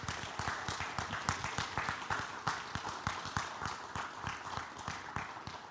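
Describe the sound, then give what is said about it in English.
A large church audience applauds steadily for standing mothers, grandmothers, great-grandmothers and surrogate mothers, dense overlapping claps filling the space with a sustained, even roar that neither builds nor fades over several seconds, with no voices standing out. “And if we could just give them a round of applause, we want to thank them and recognize them.”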